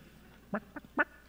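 A chicken gives three short, quick clucks in a rough rhythm over a quiet background with no talking.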